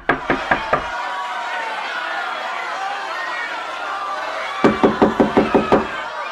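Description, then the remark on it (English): Heavy, rapid banging by people on the closed wooden exit doors of a theatre hall in two bursts, a few hard thumps at the start and a longer flurry near the end, over a steady murmur of crowd chatter. “They banged against it, a relentless, desperate thumping sound accompanied by cries of abject terror.”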